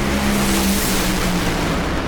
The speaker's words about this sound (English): powering down the racetrack, and it's Billy Torrance, 3.802 seconds at 322 miles an hour